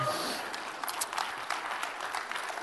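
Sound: audience clapping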